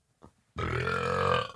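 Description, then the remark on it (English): A single long, loud, rumbling burp that starts abruptly after a brief soft breath and holds steady for about a second before fading out, with no speech. “I was getting the gas out to show some respect.”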